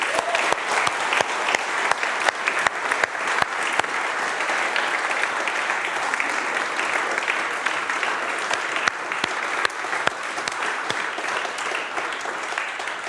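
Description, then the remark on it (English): A standing church audience breaks into a sustained round of applause to thank the church's team members: dense steady clapping at an even loudness for about thirteen seconds with no talking over it. “And as we stand, can we just give a round of applause and thank all our team members in the life of the church who do an amazing job.”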